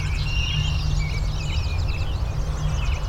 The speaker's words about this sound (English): A lot of birds all around. As I turn, there's no change because it's omnidirectional.